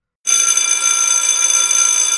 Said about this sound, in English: Whap! A massively loud bell rang.